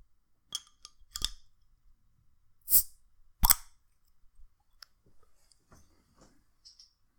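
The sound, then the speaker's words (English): A bottle of vanilla porter beer is opened with a few sharp metallic clicks and a crisp pop-hiss of the cap, then faint, intermittent splashing as the dark beer is poured into a glass. No one speaks. “So with that being said, I'm going to go ahead and pop this one open.”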